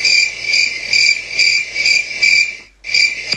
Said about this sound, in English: Ooh, these crickets. I could dance at this cricket noise.